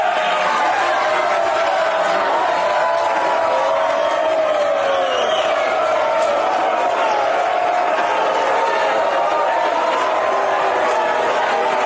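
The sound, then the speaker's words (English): A loud, restless crowd of hecklers jeers and boos without letup at Don Jr.'s book launch event for Triggered with Charlie Kirk, many voices shouting over one another in a dense, steady roar for the whole stretch. “to launch the book and do some shtick on it with Charlie Kirk and another interviewer, the event descended into madness pretty quickly with hectors and booing, and people weren't allowed to ask questions, which I guess made them annoyed as well.”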